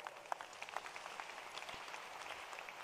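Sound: audience applauding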